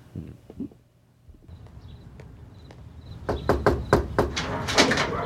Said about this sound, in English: And then they knock on the mom's door.